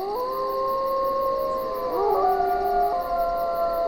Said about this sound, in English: If you think of Yellowstone, you know, you've got those bubbling mud pools from geothermal activity. You've got packs of wolves which howl.